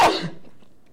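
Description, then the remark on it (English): A single sharp sneeze, played back from a recording, bursts out loud, then quickly fades into a short, quiet tail with no talking. “I'm gonna listen to this episode and realize that I sneezed in a fucked up manner.”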